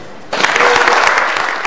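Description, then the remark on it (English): Applause from a crowd, especially the disabled, breaks out suddenly and continues steadily as First Lady Sia Kuruma launches the Dorothy Springer Trust in Freetown on 9 February 2010. It is a dense, loud patter of many hands clapping with no one speaking. “With these words and amid smiles and clapping, especially by the disabled, the First Lady, Sia Kuruma, launched the Dorothy Springer Trust.”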